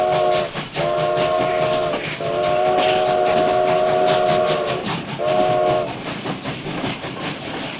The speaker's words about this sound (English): Jeez, that train whistle's loud, which, I mean, yes, because you have to, because there's sound in space.